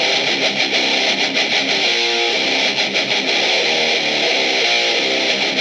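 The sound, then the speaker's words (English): A chunky, heavily distorted electric guitar riff opening a song plays loud and dense, with a steady driving rhythm and thick, saturated tone filling the whole sound, no voices present. “It does a classic thing by opening with a great sort of like chunky riff”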